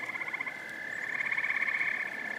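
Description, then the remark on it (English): A dense chorus of frogs calling together at a vernal pool in the middle of the woods, a continuous rapid trilling and pulsing that fills the air steadily, with no voices present. “One thing that I really enjoy when it's snowy and you come up on a vernal pool in the middle of the woods and all you can hear is frog calls, like that's one of the coolest things I think you can experience in the woods here.”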